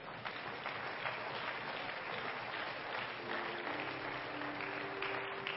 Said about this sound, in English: Why don't we give them a hand clap today?